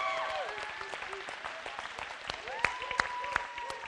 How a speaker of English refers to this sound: Anyway, so I wanted to start off and just have you guys give a round of applause for yourselves. Can we just do that? Come on, you guys. I want you guys to applaud like the Kings made to the playoffs. Woo! Yes.